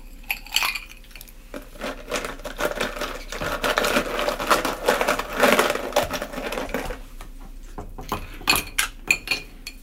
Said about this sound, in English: All right. So that's it. Now we add ice and we stir it. Okay. Good enough?